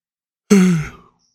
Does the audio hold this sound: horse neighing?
no